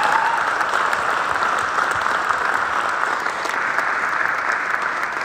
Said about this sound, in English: Have you had a great conference so far? Give all the people who have put this on a round of applause.